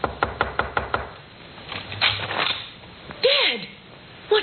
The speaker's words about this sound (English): Then he stumbled to the door of Joy's room and knocked.